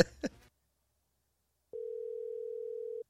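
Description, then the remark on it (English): A short burst of voice at the start gives way to silence, then a single steady ringing tone of an outgoing phone call hums for just over a second, clear and fairly loud. “He's going to answer.”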